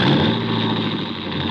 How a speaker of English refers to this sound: I heard a car start outside